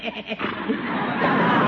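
A pony named Butch whinnies in a short, wavering burst of harmonic calls that trail into a rough, breathy rumble while nuzzling someone.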